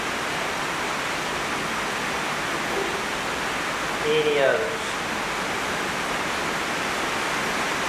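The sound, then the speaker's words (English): Rain drums steadily on a tin roof during a morning church service as a dense, even hiss that holds throughout, with a short spoken question rising briefly above it midway. “I am thankful for the beautiful noise that it makes on a good old tin roof.”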